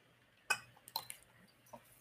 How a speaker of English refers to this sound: So let me take a sip of water.